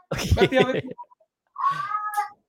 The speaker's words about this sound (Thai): นั่นเสียงแมววะ แมวกัด ตกใจนึกว่ามีฆาตกรรม